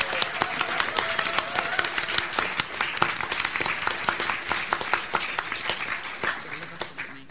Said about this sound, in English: Please clap your hands for the one, the only